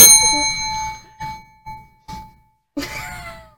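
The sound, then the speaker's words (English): A small bell is rung several times in quick succession, a bright ringing strike followed by three lighter dings and then one more loud ring that lingers and fades, clear. “Ring the bell.”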